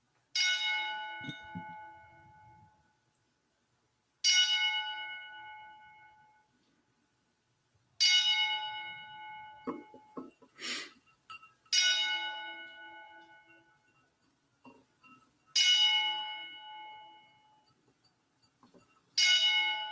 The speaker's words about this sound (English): We thought we would do it. So, yeah. So join us as we take a moment of silence here with the 10 bell salute.